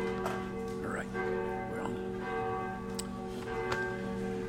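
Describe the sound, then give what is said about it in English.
The church bell of Trinity Lutheran Church in Freistadt, Missouri tolls steadily before a morning worship service, its rich overlapping tones ringing and sustaining throughout, while faint indistinct voices murmur in the background. “We'll wait for the bell to finish tolling.”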